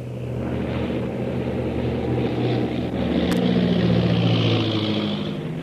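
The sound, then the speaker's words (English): A propeller plane's engine drones loudly and steadily as the pilot banks the plane to come in for a landing from the other side, its low throbbing hum swelling slightly partway through as the aircraft turns, with no voices present. “I'll bank the plane and come in from the other side.”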